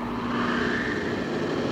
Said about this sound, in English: Progress is the sound of a motor, the hum of a turbine,